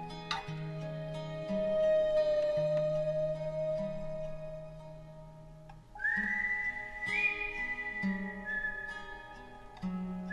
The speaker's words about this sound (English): Now just wandering off down the street, whistling to himself. Yep. Leaving the pain behind him.